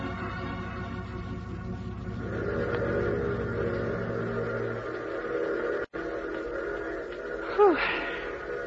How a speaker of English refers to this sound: Well, at least the train seems to be on time.